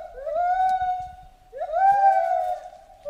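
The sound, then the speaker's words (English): A recording of monkeys howling in long, drawn-out wails, two sustained calls that rise and level off, loud with no talking. “what I'm thinking is, you know, you and a couple of your boys went with some heavy-duty sound equipment recording deal, threw some microphones up in the tree where the monkeys are, and, you know, hit record for a few hours.”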